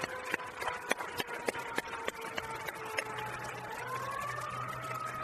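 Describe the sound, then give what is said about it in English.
A fire truck siren wails, its tone sliding slowly upward as it passes, with sharp repeated clicks early on and a low engine rumble joining toward the end; the trucks come from a firehouse right by. “The fire trucks that seem to go by.”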